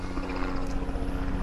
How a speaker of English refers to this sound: So there's a helicopter going over. I'm not sure how loud that is.